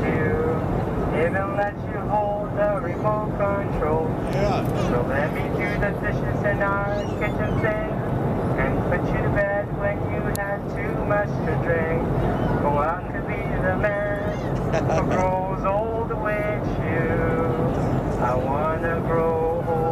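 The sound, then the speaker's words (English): A single voice sings a serenade to the whole plane in long, sustained melodic phrases over the constant low roar of an airplane cabin, fairly loud throughout. “And then the whole plane is treated to this, like, this awesome serenade.”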